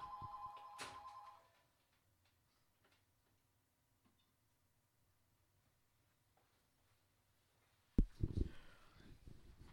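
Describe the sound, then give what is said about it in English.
A telephone rings briefly with a bright electronic tone at the start, then fades into near silence before a sudden loud burst of noise near the end. “We got the phone ringing.”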